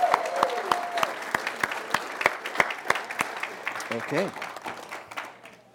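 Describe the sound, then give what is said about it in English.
An audience applauds special guests with dense, steady clapping and a few sharper claps standing out, while scattered voices call out over it before the applause tapers off at the end. “Hey, let's give another big round of applause for our special guests.”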